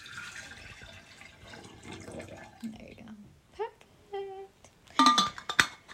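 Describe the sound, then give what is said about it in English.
Water is poured out of a copper water bottle, splashing and pouring steadily for a few seconds, followed by brief voices and a couple of sharp clinks of glass or metal near the end. “Can you pour that water out in there so it doesn't get infused in the copper water bottle?”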